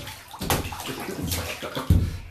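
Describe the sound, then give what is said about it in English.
A child splashes water in a bathtub, with several sharp bursts of splashing, the loudest near the end, over a continuous wash of moving water. “No, you're getting water everywhere.”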